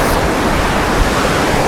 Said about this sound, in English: I'll tell you what I'm going to do. I'm going to leave this waterfall now and find another portrait picture on the way back, because I want to.